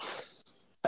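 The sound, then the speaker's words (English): A sharp sneeze, from bad allergies, bursts out and quickly trails off into quiet, with another abrupt noisy burst right at the end. “Bless you. I got bad allergies.”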